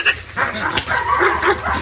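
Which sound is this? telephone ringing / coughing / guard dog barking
guard dog barking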